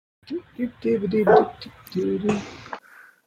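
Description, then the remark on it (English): A puppy barks and yips in a few quick bursts, with short pauses between them, ending in a softer whimper-like sound. “So okay, come on. That's the puppy.”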